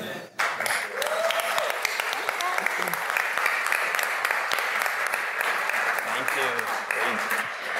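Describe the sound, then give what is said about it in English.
An audience applauds steadily for the panelists and judges of a startup program event, a dense, hissing wash of many hands clapping at once, with a few faint voices murmuring underneath. “Can we get a round of applause for our panelists, our judges?”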